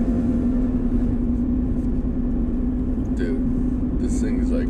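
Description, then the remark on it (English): A car engine roars under nitrous boost, a loud, steady droning rumble with a constant low hum throughout, and faint voices cut in briefly near the end. “Our NOS burning, I think.”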